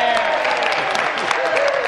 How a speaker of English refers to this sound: Everybody stands up and applaud. Yeah, here. If you cover provincial politics or ever have the opportunity to go down and see question period, this is what happens when the premier says anything.